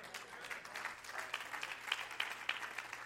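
An audience claps steadily, many hands making a dense, crackling patter with a few sharper individual claps standing out; the applause holds at a moderate level for about three seconds.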